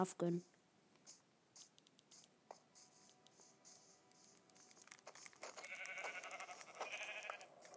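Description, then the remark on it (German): A single short, loud sheep bleat in a video game rings out at the very start, followed by scattered light clicks and a rising wash of busy background noise. “Ich muss mir das Schaf gönnen.”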